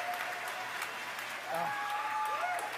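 crowd cheering and applauding

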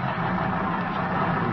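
car engine running

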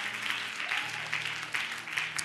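audience clapping hands

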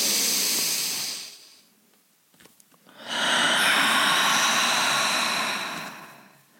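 deep breathing

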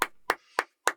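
single hand clap

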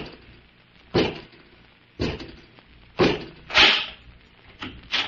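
door being opened

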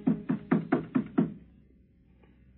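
knock on a door

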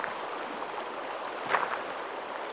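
flowing river water

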